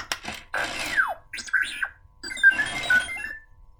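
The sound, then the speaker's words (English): A BB-8 toy droid chirps out a quick string of happy electronic beeps and warbling whistles, with pitches that swoop and slide up and down in two bursts separated by a short pause. “Happy beeps, right?”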